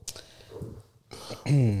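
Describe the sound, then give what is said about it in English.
A loud, low, croaking heartburn burp erupts near the end, following a second or so of quiet breathy murmuring and faint mouth noises. “That was the fucking, that was a heartburn burp, by the way.”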